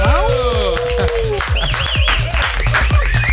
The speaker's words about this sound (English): The applause keeps getting better for you